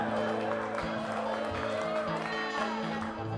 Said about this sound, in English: Now that's what I call a hand clapping, foot stomping good time.